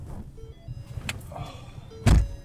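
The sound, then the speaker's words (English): Someone gets into a battered white Prius loaned out by the county: soft rustling and a sharp click, then a heavy door thunk near the end, with a low muffled hum underneath and no talking. “Justin gets into the battered white Prius the county loans out to the project for moments like this one.”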